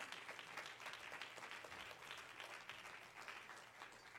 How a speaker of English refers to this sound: As Pastor comes to teach Bible study, I'm going to ask you just to clap your hands to Jesus one more time and give Him praise.